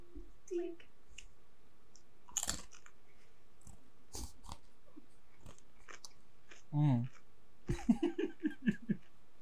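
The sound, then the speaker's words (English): Crisp crunches of someone chewing everything bagel seasoning pretzel crisps, coming in scattered bites and then a quicker run of crunches near the end, with brief voice sounds mixed in. “As I paw all the chips.”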